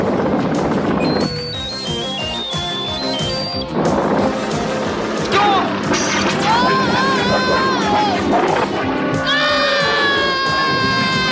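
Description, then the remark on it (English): A trio of people scream in high, wavering cries while dangling inside a cable car from a tower after Switchblade's laser blasts cut the cable, over a dense, loud background of crashing action noise, the screams growing more frequent and sustained in the second half. “Switchblade is still blasting away and ends up cutting the cable with the trio still inside, and they're screaming and dangling from this tower.”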